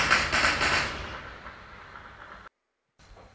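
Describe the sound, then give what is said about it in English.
A loud burst of gunfire in Kabul, amid house-to-house executions, crackles at the start and rolls off into a fading echo over about a second, followed by a brief dead gap and faint background noise. “Those are guns.”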